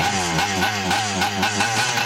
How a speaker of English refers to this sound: I mean, what are your thoughts on the sound effect there for the Nerdometer? Does that sound like a chainsaw or does it sound like a 1958 moped from... I'm definitely revving up the chainsaw on that one.